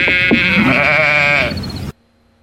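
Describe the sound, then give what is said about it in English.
A single loud, wavering bleat from a goat, lasting about two seconds before cutting off abruptly into silence. “The sheep is the most Australia thing he's ever added. It's a goat.”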